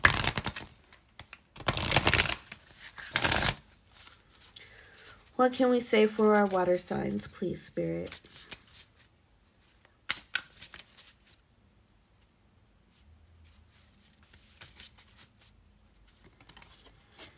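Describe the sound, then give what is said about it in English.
Oracle cards being shuffled in bursts of crisp, riffling flutters to pick a Moon Oracle card to close a reading, with a woman speaking briefly in the middle, then soft intermittent card rustling and tapping afterward. “So I am going to go ahead and pick a Moon Oracle for you to close this reading on out.”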